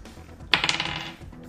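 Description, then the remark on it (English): Dice rolled for an attack in a tabletop game clatter across a hard table, a sharp initial hit followed by a quick series of rattling bounces that fade out within about half a second. Fairly loud, with no voices. “No, fuck this dice.”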